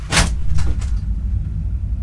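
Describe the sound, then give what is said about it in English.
A heavy lorry rumbles past outdoors with a deep, steady engine drone, broken early on by a few sharp hissing, clattering bursts, heard as if through an open window. “It's the lorry going to Malmesbury with all my falafels.”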